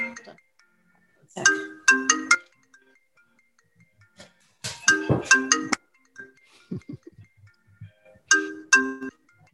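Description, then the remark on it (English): A phone ringtone for an incoming call from the speaker's daughter plays a bright, melodic electronic burst three times, with short pauses between repeats, clear, with only faint background noise in the gaps. “So they, that's my daughter. Hold on a sec.”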